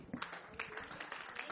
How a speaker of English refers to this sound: Hallelujah. Oh, you can give a better one to Jesus. Hallelujah. A better clap offering unto Jesus.